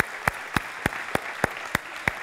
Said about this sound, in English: Hey, let's give those people that prayed that prayer a round of applause. Man, way to go! That is awesome! Woo! That is exciting!